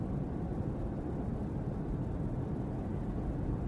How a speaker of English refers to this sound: Nice soothing hum of the vehicle is deeply relaxing.